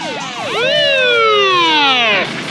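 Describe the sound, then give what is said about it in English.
A police siren starts with a couple of quick rising chirps, then settles into one long, loud tone that slowly falls in pitch, its strong harmonics sounding on their own. “Somebody's always got to call the fuzz.”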